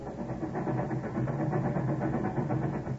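Train wheels running on tracks of a train going to Chicago at night in the rain in 1896 make a steady, heavy low rumble with a faint, regular rhythmic pulse running through it, continuous for the whole stretch with no voices.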